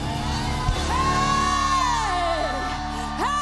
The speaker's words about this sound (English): This should be the greatest shout that we've ever shouted. It's for the future. Hey, it's the God of the future.